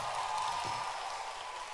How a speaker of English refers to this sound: And before you sit down, I want you to clap your hands for the dancing stars. Let your hand clap be louder and a louder and a louder hand clap. And also clap your hands for yourself.